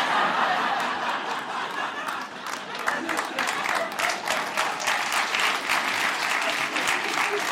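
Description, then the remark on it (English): A crowd applauds steadily, many hands clapping in a dense, continuous patter that stays loud throughout, with a few faint laughs mixed in. “See, sometimes when people start applauding, other people are like, no, we don't want to move our arms.”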